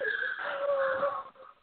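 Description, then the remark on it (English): A voice imitates a sharp, held gasp: one strained, wheezy intake of breath sustained for over a second before trailing off, fairly loud with no talking. “I was just, you know, that's one of those things, you know, just makes your mom just gasp and hold it just like.”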